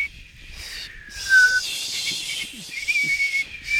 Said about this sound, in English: You think it's a tongue whistle? It sounds like it might be a tongue whistle, you know, through the teeth rather than a lip whistle. It doesn't have the round tone of a lip whistle.